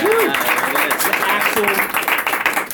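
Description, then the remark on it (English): A live audience at Berklee claps steadily, a dense rattle of many hands filling the whole stretch at a fairly loud level, with a few voices calling out over the applause. “That's either the best clap track ever, or it's an actual live.”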